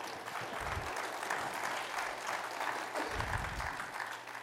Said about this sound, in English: Can we give Jesus a big clap offering?